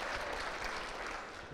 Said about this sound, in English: That's a great question. A round of applause for the question.